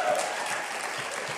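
Audience applause on the TV show Huckabee for the show's band, a steady wash of many hands clapping at an even loudness for the whole moment, with no voices standing out.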